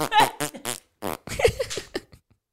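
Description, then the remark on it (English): A rapid string of fart sound effects played from a phone, several short bursts one after another with buzzy, harmonic tones, loud, fading out near the end. “Like, hey, Siri, play wiggly party and fart sounds at the same time.”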